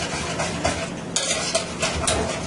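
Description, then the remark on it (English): A utensil stirs a thick batter of about 650 grams of flour and almost 1 liter of water in a bowl, with repeated soft scraping and wet slapping strokes in an uneven rhythm and occasional light clinks against the bowl. No one speaks. “Use the batter to beat the flour.”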